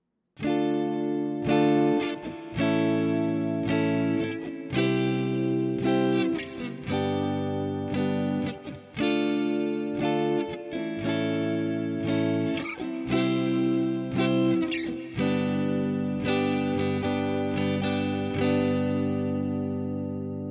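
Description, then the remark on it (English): An electric guitar plays a steady run of strummed, effected chords through a Boss digital reverb pedal with modulated, spring, plate, hall, room, dynamic, shimmer and delay modes, each chord ringing out loud and full, with a lingering tail at the end and no talking. “It's a real beast of a digital reverb that really pushes the limits of how far the technology can go.”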